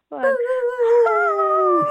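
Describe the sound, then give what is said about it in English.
Children's voices imitate a wolf howl together, a single sustained, slightly wavering and gradually falling howl lasting almost two seconds, loud, with no talking over it. “…'s howling with you. I did like a puppy one.”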